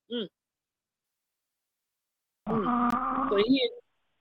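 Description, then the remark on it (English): A person snoring: one loud, rough, rattling snore lasting just over a second, heard after a brief faint sound and a stretch of silence. “Somebody snoring?”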